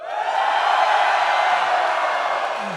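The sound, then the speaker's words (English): A large live audience at a GFOP show cheers and roars, a dense, steady wall of crowd noise that stays loud for the whole few seconds, with no single voice standing out. “So in Podland, they can hear how large this crowd is.”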